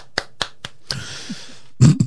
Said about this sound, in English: You know, clap for the NHS.